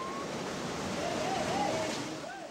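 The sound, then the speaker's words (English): A steady, rushing wash of surf breaking on a beach in Indonesia piled with used clothing, continuous, with faint high chirps or cries drifting in over the roar. “A beach in Indonesia piled with used clothing.”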